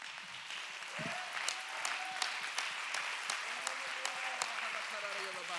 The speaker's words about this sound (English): Let's clap our hands and give him some praise.